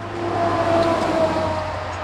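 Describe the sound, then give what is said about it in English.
Steady roadway noise from vehicles moving through the intersection of Highway 61 and County Highway B, a few miles north of Potosi, Wisconsin, a continuous engine hum and tire rumble holding at moderate loudness with no one speaking. “Here, at this intersection of 61 and County Highway B, a few miles north of Potosi, Wisconsin.”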